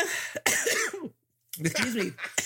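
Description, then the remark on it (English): A person coughs in two rough, hacking fits separated by a brief silence, each with sharp bursts and raspy, voiced throat sounds. “Let me cough up this hairball.”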